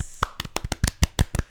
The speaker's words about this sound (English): Round of applause.